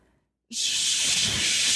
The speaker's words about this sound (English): Yes. A waterfall. Yes. All right. It's a waterfall.